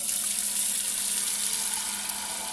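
A steady rush of tap water pours into a pot being filled for boiling, a continuous bright hiss that holds an even level for a few seconds with no voices.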